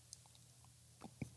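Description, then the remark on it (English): A quiet sip of coffee from an Ember mug: a brief slurp followed by a soft gulp and faint mouth sounds over a low, steady hum, with no talking. “Taking a sip of my coffee out of my Ember mug, not an ad.”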